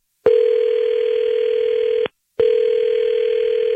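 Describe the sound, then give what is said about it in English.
A phone line rings out as The Fred Show on 103.5 Kiss FM in Chicago places a call: two long, steady electronic tones at a single mid pitch, each lasting nearly two seconds with a brief silent gap between them. No voices are heard. “Okay, let's call her now.”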